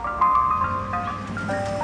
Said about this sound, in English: Oh, look, I said. The ice cream truck.